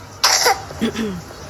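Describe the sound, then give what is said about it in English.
A child coughs twice, fairly loud: a sharp, breathy first cough followed by a shorter, voiced second one, with no talking around them. “Children coughing. I love that.”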